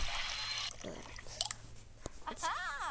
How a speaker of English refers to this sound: Alright, so pour a little water in it.